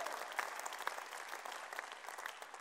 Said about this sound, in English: If you know what I'm talking about, just give me a wave or something. Hundreds of hands. Yeah, clap if that's happened to you.